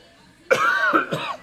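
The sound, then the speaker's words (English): A loud cough from someone with a frog in the throat, in two or three harsh bursts, rough and throaty, starting abruptly after a brief quiet moment and fading out within about a second. “We might have to kill the maybe cough.”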